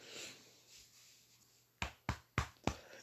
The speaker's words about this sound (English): He just patted me on the back for those wondering. What that slapping sound was.